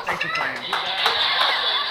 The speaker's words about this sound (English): All right, give Purple Shirt a round of applause. Woo! Awesome.